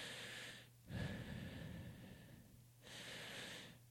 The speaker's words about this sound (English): In addition to your posture, you'll notice that you might be in a place where you are breathing really shallow. What if at that same time you take some deep breaths?